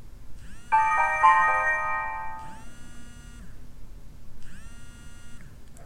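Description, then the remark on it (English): A bright electronic chime rings out clearly as a new text message alert on a Haven phone, a short melodic run of tones followed by fainter repeated tonal phrases over a low background hum. “Okay, we've been alerted that we have a new text message, but we don't know where it's from, so we need to open the phone and check it out here.”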